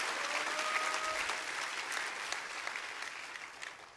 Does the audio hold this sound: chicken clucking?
no